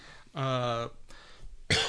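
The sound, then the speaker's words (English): A strained, voiced throat clearing lasting about half a second, a brief pause, then a single sharp, breathy cough from a person with a sore throat after sneezing hard. “sorry, my throat's fun today.”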